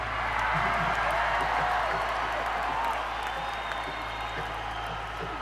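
A large crowd reacts with disappointment, a loud, steady wash of many mingled voices and scattered clapping that holds throughout with no single voice standing out, and a thin whistle sliding faintly above.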